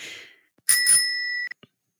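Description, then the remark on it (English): A small metallic bell on a nipple piercing is shaken, giving a bright, piercing ring that holds for most of a second before cutting off, followed by two faint light taps. “Well, when I shake it like that, it sounds like a bicycle bell.”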